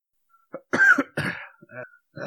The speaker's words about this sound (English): Got to get your cough in.